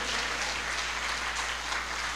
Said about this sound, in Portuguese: Isso merece um aplauso, ele fez. Ele fez.